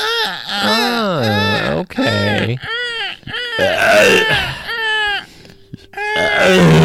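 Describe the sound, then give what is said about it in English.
A person makes a loud string of swooping, warbling vocal sounds, imitating a bird call in several rising and falling bursts, with a brief spoken word among them. “That's kind of like a bird.”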